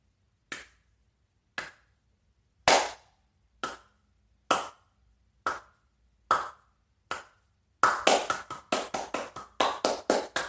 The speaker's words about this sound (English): Just in case you didn't figure that out, I just realized because my clapping sounds really weird. I was clapping. Going on a nice little slow clap and then going into the faster one, you know, to show just how much they fucking own themselves.